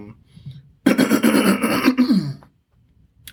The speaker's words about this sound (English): I was just trying to clear my throat regular and then it started getting real serious.